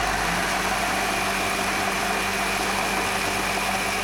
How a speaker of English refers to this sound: As Garrett opened his mouth to reply, the espresso grinder and the blender fired up in unison.